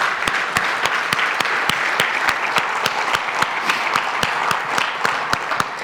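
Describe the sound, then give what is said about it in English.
A crowd gives God a round of applause, clapping steadily for several seconds, a dense wash of many hands with a few sharper, louder claps punctuating it at a quick, fairly regular pace, full. “Y'all take 5 seconds, give God another round of applause.”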